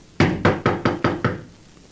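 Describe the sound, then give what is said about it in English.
Five firm knocks on the wooden door of a house, from the porch, in a steady, evenly spaced rhythm, fairly loud, with nothing else sounding around them. “You going to knock?”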